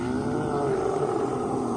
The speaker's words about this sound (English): What was that? I can't be certain, of course, but I think it was an unearthly roar.